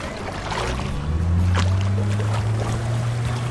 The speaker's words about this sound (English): Oh, doesn't that sound good? Hear the lake water lapping. That is definitely the sound of summer here.